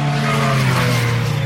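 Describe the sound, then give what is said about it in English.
Steady, loud engine drone with strong harmonic tones as race cars drive through the Porsche curves while lining up on the grid before the race start, with a hint of tire squeal over a continuous roar. “You're listening to the sound of the cars going through the Porsche curves as they line up for the grid for the start of the race.”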